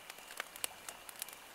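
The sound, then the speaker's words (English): A campfire crackles softly, with sharp, irregular pops and snaps scattered over a faint steady hiss. No voices are heard. “Some of the other sounds that I came across for campfire sounds”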